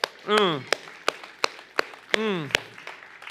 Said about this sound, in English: Oh, can somebody just clap for that point right there?